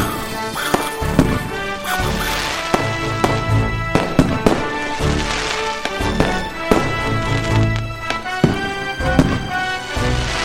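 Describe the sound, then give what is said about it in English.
Fireworks go off in a steady string of loud bangs and crackles about every second, layered over a sustained tonal backdrop; nobody speaks. “Fireworks!”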